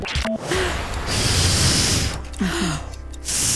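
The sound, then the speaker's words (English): Someone imitates blowing up a balloon with their voice: long, breathy rushes of air broken by brief pauses, plus a few short squeaky vocal tones, with no words spoken. “Blown up a balloon. Yes!”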